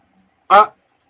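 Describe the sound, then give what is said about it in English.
A single short, loud burst of a voice mimicking a buzzing fly, a quick nasal buzz of about a quarter second set against near silence. “That stupid fly is talking to me again. Apparently flies can talk in this world.”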